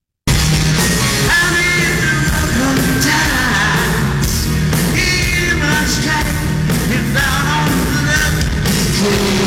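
A live rock band plays loudly and continuously on a Saturday night, with a dense, harsh wash of guitars, pounding drums and a wavering sung vocal, recorded as a crowd-shot video rather than from the board, with a muddy, distorted quality.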